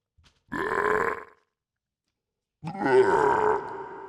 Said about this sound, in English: And if you're that type of freak, I need a throw up sound. Do I have that? Do I? No, you got no throw up sound. Hold on, maybe this will work.